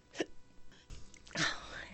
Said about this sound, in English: The hiccups so bad. I think this is the first time either of us have had really hiccups. Hard to listen to. I'm sorry.